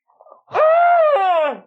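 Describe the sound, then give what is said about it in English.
A person stifles a Wilhelm scream after a moment of near silence: one loud, sustained cry lasting about a second with a brief catch partway through before it fades. “I just muffled a Wilhelm scream I'm serious.”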